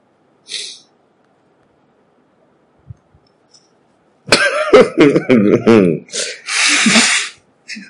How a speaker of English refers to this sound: Jeez, are you just blowing your nose inside the microphone? I'm sorry.